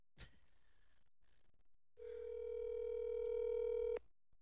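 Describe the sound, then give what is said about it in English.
A single steady ringback tone from an outgoing phone call hums for about two seconds and then cuts off, preceded by a faint click over quiet line noise; no one speaks. “I won't cut this phone call out because this is an important one.”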